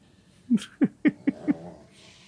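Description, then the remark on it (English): A dog lying on its back on top of a bed, scratching an itch on its back, grumbles in five short, low, throaty bursts spaced evenly about a quarter second apart, moderately loud, with no talking. “And he's just rawr, rawr, rawr, rawr, on top of this bed.”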